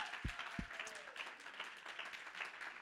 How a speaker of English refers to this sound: Oh, somebody clap your hands and magnify him.